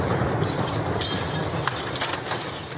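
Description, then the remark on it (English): Glass from explosions in a Russian airstrike on a maternity hospital in Mariupol, Ukraine, shatters and rains down onto the street in several sharp, bright crashes and tinkles over a steady, rough roar of background noise; no distinct blast stands out. “In video captured from the scene, glass from the explosions shatters onto the street.”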